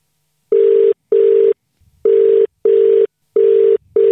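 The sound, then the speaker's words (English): A phone ringback tone while calling a man who does not answer, repeating in a steady double-pulse pattern: two short buzzing tones, a brief pause, then two more, clear and fairly loud with no one talking. “Let's see if we can get him on the phone.”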